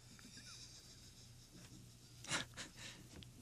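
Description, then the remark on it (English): Quiet scratching of a pen or pencil across paper as someone writes an answer down, a few short strokes with a brief louder scrawl near the end, over a low steady hum with no talking. “He's probably writing a curse word down on a piece of paper right now.”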